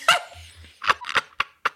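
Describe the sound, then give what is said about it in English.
A dog barks, one sharp bark followed by a quick run of four more short, clipped barks, with a brief low rumble between the first and the rest. “And she's an alcoholic, and she's come home, and the dog's really disappointed in her.”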